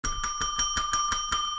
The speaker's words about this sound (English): Well, everybody who listens to this podcast knows what that bell means. That means it's time to play our weekly game, Boom Again.